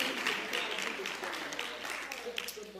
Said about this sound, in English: Give the Lord another hand clap of praise.